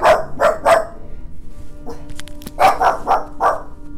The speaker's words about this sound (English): I swear this dog never barked in her life.